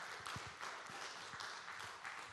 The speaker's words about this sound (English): Come on, let's give the Lord a good round of applause today.